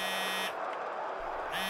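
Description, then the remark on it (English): A phone buzzes with an incoming call: a harsh, steady electronic buzz sounds, stops for about a second, then starts again, loud and with no voices. “Another dodgy phone call. Just answer it.”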